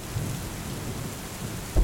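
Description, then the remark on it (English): Steady rain hisses throughout while low thunder rumbles underneath, swelling into a louder, deeper boom near the end. No voices, just the storm. “This week I learned why dogs get so freaked out during thunderstorms and firework displays.”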